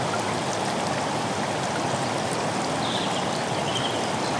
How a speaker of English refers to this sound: You start walking towards this waterfall and begin to feel the mist on your face and hands as you approach it.